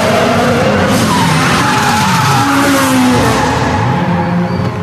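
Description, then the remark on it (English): A car drifts with tires skidding and squealing continuously, over a loud, steady engine roar with shifting high-pitched tones, lasting about five seconds without any voices. “That. Is the sound of drifting.”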